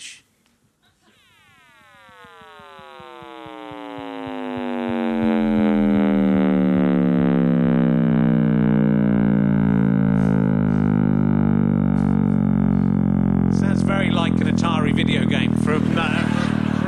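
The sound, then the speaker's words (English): A Big Bang sonification, the originally far too deep sound boosted in frequency by a million times to be audible: a buzzy, harmonic tone that swells in loudness while sliding steadily downward into a deep, sustained roaring rumble, with a burst of hissy noise near the end. “I should tell you that the sound of the Big Bang was very deep. Yes. Far too deep for you to hear. So that's actually been boosted in frequency by a million times for you to hear it.”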